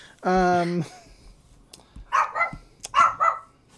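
animal, dogs barking

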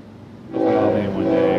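sound effect, train horn sound effect

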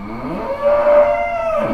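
animal, cow mooing

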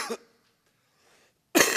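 human body sound, coughing and throat clearing

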